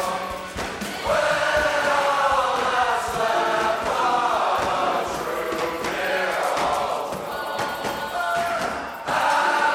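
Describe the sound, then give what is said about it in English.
A large crowd of people sings together loudly with no instruments, many voices blending into a sustained, swelling chorus that carries steadily to the end. “And then the single, this is the one that has this cool ending, is just like this giant sing-along where the instruments finally fade out and it's just them.”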